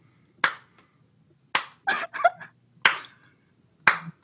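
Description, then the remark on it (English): Sharp hand claps sound loud in an uneven rhythm, four single claps with a quick flurry of smacks in the middle, done to mimic butt cheeks clapping. “I wasn't sure if that was your cheeks clapping because you're doing an act out of.”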